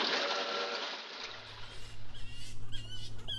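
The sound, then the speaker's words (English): Shrill, high-pitched screeches of bats chirp repeatedly in the trees over a low boat-engine hum as the boat comes into its mooring point, after a burst of rushing water at the start. “It seems the bats are still screeching in the trees.”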